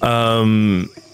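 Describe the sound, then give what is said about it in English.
A person imitates flies buzzing with a steady, loud droning hum held for nearly a second, sliding slightly lower in pitch before cutting off abruptly. “The flies buzzing kind of help mask your movements”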